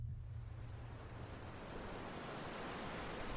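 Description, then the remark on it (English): Steady, rushing surf fills the scene, ocean waves breaking continuously with a broad hiss and low rumble as fog blows in over the water, with no voices present. “The fog blowing in over the water with the sound of the waves crashing in, over and over.”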